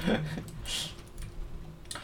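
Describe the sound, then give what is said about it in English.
Scattered clacks of typing on a computer keyboard, a few quick key presses spread over two seconds, with a brief murmur of a voice at the start and low background hum. “So I can hear your keyboard.”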